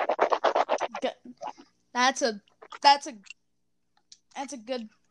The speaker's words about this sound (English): That's a good sip of water right there. Excuse me there. This sparkling water is actually... What flavor is this? Orange mango. I just chug this down.